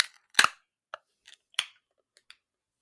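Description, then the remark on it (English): A can of IPA beer, canned less than a month ago, cracks open with a sharp metallic snap, followed by a few small clicks and a second burst that trails off in a short fizzing hiss. No one speaks. “Like, their IPAs don't go bad that fast, usually. Usually. All right, 3, 2, 1, crack.”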